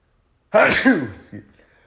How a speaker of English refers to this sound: I'm gonna sneeze.